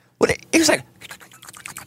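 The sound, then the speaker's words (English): Two abrupt, loud gulping sounds close together, like water being swallowed hard, the second a bit longer, as a man drinks water by pouring it into his mouth, followed by softer murmuring voices in the background. “I was just pouring it in my mouth.”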